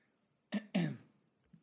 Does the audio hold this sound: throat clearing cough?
yes